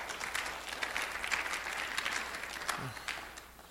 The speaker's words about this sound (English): Church, what we went through as a church, it takes a lot for you to continue stepping where you're at right now. Give yourselves a good clap offering. Amen.